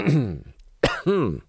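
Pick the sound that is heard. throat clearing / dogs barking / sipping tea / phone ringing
throat clearing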